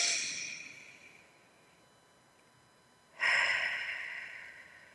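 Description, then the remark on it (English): A deep, slow belly breath taken in through the nose and out through the mouth: a long airy exhale fading out, a pause, then another audible breath starting sharply and trailing off, with no talking. “Breathing in through your nose, big belly, and then out through your mouth, like through a straw.”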